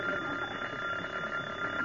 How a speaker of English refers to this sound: Oh, that darn phone.